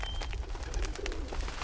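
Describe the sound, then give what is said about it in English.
A faint, airy whistling from whistles tied to the tails of pigeons flying in the sky above Beijing's hutongs in the early afternoon drifts by overhead, steady, over a low outdoor rumble and background noise. No one speaks. “The sound is produced by whistles tied to the pigeons' tails.”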